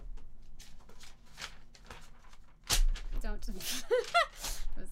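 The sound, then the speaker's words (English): Rustling and crinkling of paper as someone strains to rip it, a sharp tearing burst partway through, followed by more crackling alongside vocal grunts of effort. “Wow, that paper is stronger than that's fine, I can use that.”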